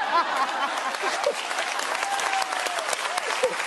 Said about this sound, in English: And look at all the guys over there clapping. Look at all of them.